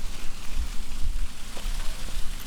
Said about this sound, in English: Oh, and there's a waterfall. Yeah. You might be able to just pick it out. This season is all about my foley work doing water sounds. Let me just get this waterfall.